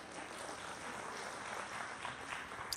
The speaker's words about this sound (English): Yeah, clap that out.